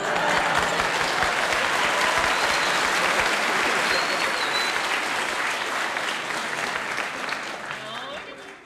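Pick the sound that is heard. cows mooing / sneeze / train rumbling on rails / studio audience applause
studio audience applause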